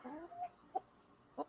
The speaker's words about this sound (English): out there, there's a chicken.